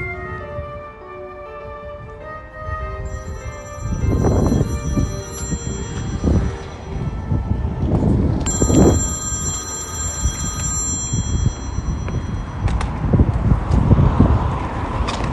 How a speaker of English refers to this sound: Helen is out on a busy road with her trolley bag when the phone rings.